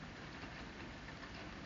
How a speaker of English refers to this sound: Even as the rain pelts against my window, I take the rain and grow.